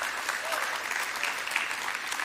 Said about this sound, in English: In fact, yeah, come on, let's clap our hands to that today.